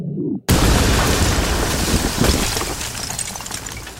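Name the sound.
explosion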